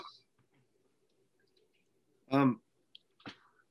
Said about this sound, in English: Dang, it was that cough, dude. In case anybody didn't know, because I'm sure we're bound to get coughs in this podcast included.